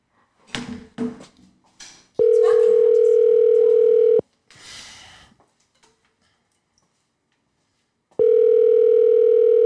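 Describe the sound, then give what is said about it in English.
A phone call rings out as a call is placed to a woman: two long, steady ringback tones about four seconds apart, loud, with clicks and handling noise before the first ring and a short rustle between. “Matter of fact, we about to call her.”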